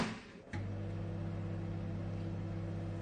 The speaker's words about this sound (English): if you'd like to set the microwave going.